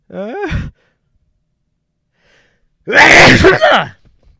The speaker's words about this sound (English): hold on, I'm going to sneeze. Excuse me.